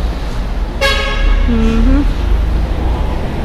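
A loud truck horn blares on Osmeña Highway at night, a sharp harmonic blast followed by a lower sliding tone lasting about a second, over steady rumbling road traffic.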